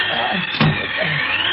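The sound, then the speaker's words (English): A strong storm wind roars steadily, a loud, unbroken rush of noise that briefly swells with a sharp gust or thump partway through. No one speaks. “No, I can't even see the plane in this wind.”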